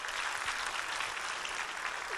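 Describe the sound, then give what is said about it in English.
A church audience applauding steadily during a service, clapping for Jesus and the worship team; dense overlapping hand claps sustained at an even, fairly loud level with no voices standing out. “Give Jesus a hand clap as you're seated this morning.”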